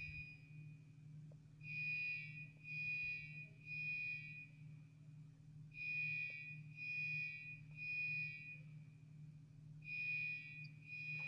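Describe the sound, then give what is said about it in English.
A smoke alarm sounds in repeated groups of three shrill beeps, each cluster separated by a short pause, over a steady low background hum. The alarm is moderately loud and no one speaks. “Here, I wish they'd turn off that damn alarm.”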